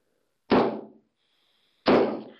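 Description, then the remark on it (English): A hammer strikes a handmade punch, made from sharpened half-inch electrical pipe with a notch for a stem, on a catalog, twice, about a second and a half apart. Each blow is a sharp, loud crack with a short ringing decay and a faint high tone lingering between them. “It doesn't really take too much force to do that. If you hit it too hard, you'll dull the tool.”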